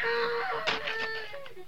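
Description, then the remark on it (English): A faint woman's scream, a thin, drawn-out high-pitched wail that holds steady pitch, broken by a few short rough bursts of noise. “I don't dig unless I hear a scream.”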